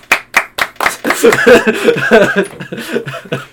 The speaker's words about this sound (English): Clap your hands.